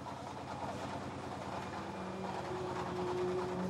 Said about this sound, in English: Still waiting for the 65 Murillo car to rejoin. And just as it was about to go, it sounded like the engine stopped.